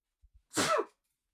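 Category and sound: human body sound, sneeze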